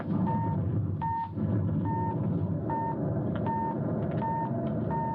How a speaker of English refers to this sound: They would have had to invent sounds for this scene of a Mars landing from the X-1 story, Mars is Heaven.